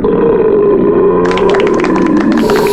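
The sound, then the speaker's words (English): A long, loud, sustained belch rumbles on for nearly three seconds without a break, gaining a rougher, raspier edge partway through before trailing off. “And 5, listen to that hang time. Give me another.”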